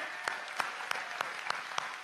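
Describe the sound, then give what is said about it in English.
Steady audience applause for 288 participants, ages 3 to 19, at the end of a week-long event: a dense wash of many hands clapping, with a few sharper individual claps standing out at irregular intervals above the crowd. No one speaks. “Let's give it up for them.”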